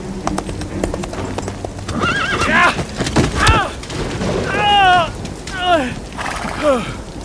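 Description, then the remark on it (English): A mare whinnies and snorts several times in close succession, its shrill neighs rising and falling, while hooves clip-clop and thud sharply as it is ridden between graves in a graveyard. “And my horse felled by a tomb.”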